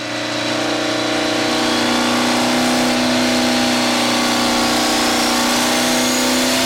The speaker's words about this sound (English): All right, so this is the Dirty Hooker truck pulling up onto the dyno. It's one of the dynos that is on the back of a truck, on the back of a semi.